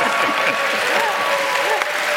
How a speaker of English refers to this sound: Thank you, crowd. Normally, it's the crowd that's cheering for you and your stuff, but in this case, you're cheering for the crowd.